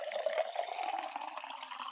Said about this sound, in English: I poured another glass.